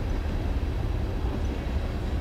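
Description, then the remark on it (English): A steady low rumble of a train passing outside the right field fence of a ballpark during a baseball game, broad and continuous with heavy low-end energy, with no talking over it. “Another train outside the right field fence. This one's going the other way.”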